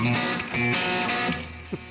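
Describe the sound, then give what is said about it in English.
A loud, dense wash of distorted tones drenched in heavy reverb, notes smearing into long ringing tails that blur together, with a brief low thump near the end and no voices. “It's a lot of reverb.”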